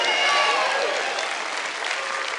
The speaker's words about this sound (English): Oh, we win. There's four people clapping.